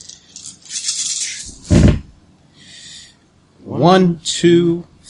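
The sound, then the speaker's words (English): Dice rattle in a series of bright, clattering shakes, then land with a dull thud. Another short rattle follows as two dice are re-rolled, before people briefly talk. “Come on, dice. Yeah, you can re-roll those two.”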